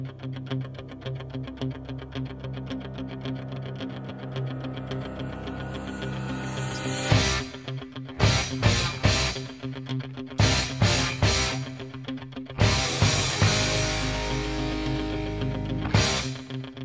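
A loud rock song plays on its own, opening with a steady distorted riff before punchy, repeated full-band stabs hit in sharp bursts, then a heavier sustained section.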